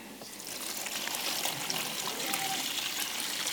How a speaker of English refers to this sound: I'm going to try this. I've no idea if it's going to work. I'm going to fill this box up with water. Here we go.